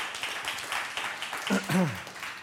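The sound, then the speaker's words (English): Audience applause welcoming guests, a dense steady patter of many hands clapping throughout, with a rising vocal cheer or voice cutting through briefly near the end. “In fact, this round of applause is for you to let you know we are so glad you're here.”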